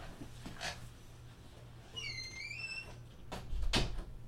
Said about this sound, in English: Sorry, folks. I had to close the door there. Door closed.